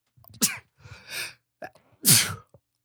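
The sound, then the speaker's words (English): Two sharp sneezes a couple of seconds apart, the second louder, with a breathy intake and rustle between them. No one speaks. “I'm going to have to make sure that you like, I didn't cover my mouth. So like you might get a sneeze through the, through the podcast.”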